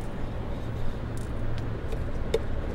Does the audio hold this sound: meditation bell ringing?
no